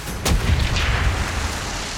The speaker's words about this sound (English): He must have been nervous, because he kept firing from the deck gun even before our panic party had left.